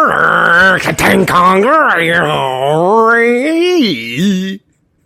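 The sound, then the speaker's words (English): A man's voice imitates a rumbling Tiger tank with a loud, sustained, growling drone whose pitch wavers up and down for about four and a half seconds, broken by a few rough sputtering bursts early on. “That's the best I can do of a tiger tank.”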